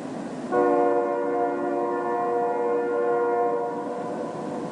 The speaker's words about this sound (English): If you've ever put your head down on a railway track, you might have heard a distant train. Now, in that case, the sounds are coming through the steel of the rail.